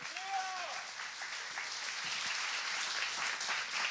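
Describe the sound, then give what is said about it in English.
An audience at a TED Talk applauds to welcome three panel guests, a dense wash of clapping that holds at an even, fairly loud level throughout, with a brief rising-and-falling whistle or cheer near the start. “So if you guys would give them a round of applause.”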